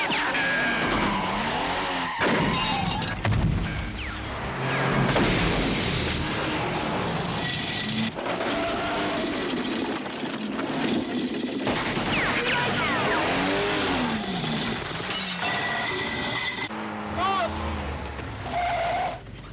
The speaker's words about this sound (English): Car without tires going down the train tracks.